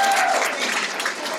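A crowd applauds steadily, a dense wash of many hands clapping at once, loud and sustained without a break for the whole moment.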